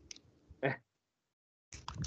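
Wet chewing of a sticky Airhead taffy candy, a few squishy mouth sounds, then a brief silence before the chewing resumes. No one speaks.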